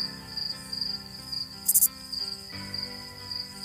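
Crickets chirp in a steady, rhythmic trill over a quiet low drone, with one brief, sharper burst of high chirping partway through. No one speaks.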